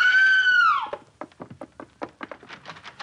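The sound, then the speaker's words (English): A woman lets out a loud, high scream to raise the alarm after finding her father dead; it holds for under a second before dropping off. A quick run of sharp knocking thuds follows. “Then, knowing that an alarm should be given, she did this.”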